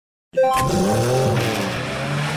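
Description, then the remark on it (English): A loud burst of revving race car engines kicks in suddenly, opening with a brief high tire squeal before settling into a sustained roaring drone. No one speaks. “Start your engines.”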